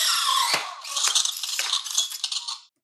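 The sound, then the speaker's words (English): A mechanical helmet mask closes on a spoken command to Jarvis, with a loud whirring clatter of servos and ratcheting clicks, a sharp clack near the start, lasting under three seconds before cutting off. “Close the mask.”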